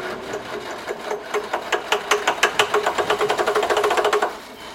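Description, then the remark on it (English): After the key is put in the ignition, a Jeep engine cranks with a fast, rhythmic chugging that starts slowly, speeds into a steady rapid pulse, then cuts off abruptly without the engine ever catching. No one speaks. “I put the key in the ignition and...”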